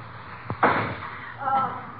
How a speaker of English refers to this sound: Ah, doggone it. Didn't work. My last firecracker, too. Gee, what are you doing shooting firecrackers off in this house? Trying to blast the lock open on the suitcase.